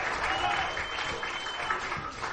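Steady applause from a crowd, a dense wash of many hands clapping at once that holds at a fairly constant level throughout, close and fairly loud.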